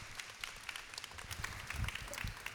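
An audience applauds to welcome a speaker up, in a steady, dense wash of many overlapping claps that holds at an even level for the whole stretch, with a low rumble underneath and no clear voices.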